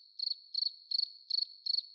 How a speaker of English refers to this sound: Or maybe you're already coaching, but despite your absolute best efforts, all you hear are crickets.